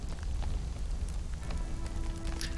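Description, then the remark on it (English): Footsteps of people walking out into the snow at the front crunch in a steady, granular texture, with a few sharper crunches standing out above a constant crackle. No voices are heard. “you hear the sounds of your friend's footsteps making their way out to the snow crunching in the front”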